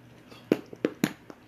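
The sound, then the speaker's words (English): Three quick, sharp crunches or clicks from someone snacking and drinking water, spaced unevenly amid quiet, each a short snap with a little low thump. “…'s snacking and drinking water while we're here, while we're doing this podcast.”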